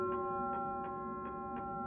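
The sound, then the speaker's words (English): A clock ticks steadily, five crisp ticks spaced about a third of a second apart, over a sustained tonal hum used as a transition effect, with no voices. “This is where we turn the clocks back.”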